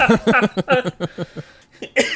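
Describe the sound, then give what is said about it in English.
A fairly loud series of short, rhythmic coughing bursts from a person coughing because they are laughing, blending into laughter-like pulses, with a brief pause before one final sharp cough. “I'm going to be coughing because I'm laughing.”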